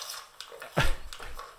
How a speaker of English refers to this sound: I don't know, but it's super crunchy, whatever he's eating. And if you plug in with these headphones, you'll really get spaced out.